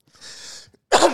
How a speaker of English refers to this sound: God, stupid cough. Are you okay? You have too?